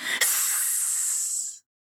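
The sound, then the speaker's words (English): A single sustained snake hiss, breathy and sharp, holding steady for about a second and a half before cutting off abruptly. No voices accompany it. “You will be a permanent visitor to the snake's nest. She hissed again.”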